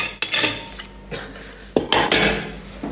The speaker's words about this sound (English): Well, now we need to wash our eating dishes, but I'm gonna hear some silverware.